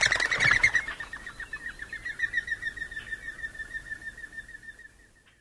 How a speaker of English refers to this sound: The mourning dove doesn't have a distinctive call, like the Eurasian collared dove, but it does have a distinctive wing whirl, which you can hear at the end of this track.